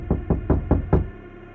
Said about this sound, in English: And then, a hard knock on the door. Was it really a knock? Or was it a collective oral hallucination? And there it was again, hard, intrusive, not going away.